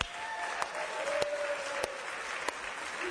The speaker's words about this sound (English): Would you guys please give a round of applause to my wonderful brother-in-law